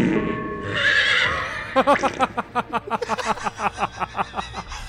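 A horse lets out a loud whinny that breaks into a long run of rapid, shuddering pulses, trailing off over a few seconds.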